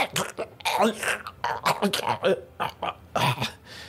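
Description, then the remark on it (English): A voice imitates guttural choking and gurgling death noises, a rough series of strained, broken throat noises and coughing sputters over about four seconds, with no clear words. “Underneath your palm, you hear the guttural, like, choking, coughing, gurgling noises.”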